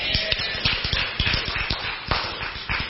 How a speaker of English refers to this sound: Half the room's going, I'm not sure what you just clapped for. It's all the divorced people that are clapping, you know.